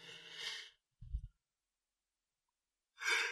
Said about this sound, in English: Excuse me again. I don't know why I'm yawning.